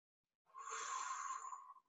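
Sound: slow deliberate breathing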